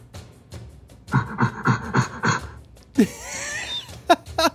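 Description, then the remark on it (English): A silverback gorilla vocalizing: five rhythmic, breathy panting hoots, then a rougher, noisier outburst punctuated by a few sharp barks. No one speaks. “I said silverback gorilla immediately.”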